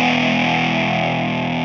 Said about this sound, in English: Yeah. This is the Spaceman Effects Explorer 6-stage phaser pedal. Ooh, rocket shit. It's pretty cool. Yeah. It has different wave patterns. I'm in the sine wave.